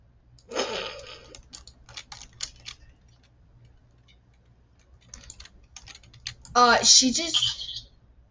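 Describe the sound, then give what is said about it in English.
Clicking computer keys in quick, irregular bursts, with a pause midway and a busier flurry of keystrokes near the end over a low background hum. “Was typing.”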